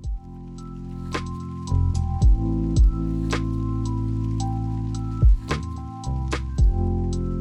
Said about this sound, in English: We'll think about it over this splash break, and we will be back with some more juicy gossip.